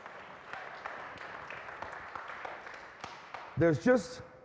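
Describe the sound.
An audience applauds with steady, dense clapping for several seconds, and a couple of loud voiced whoops or shouts break out near the end.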